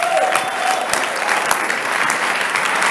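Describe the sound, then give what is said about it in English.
An audience claps for the Lord in a dense, steady burst of applause, many hands striking at once in a loud, continuous wash of sharp slaps with no voices rising above it. “Give the Lord a better clap of men and women of God.”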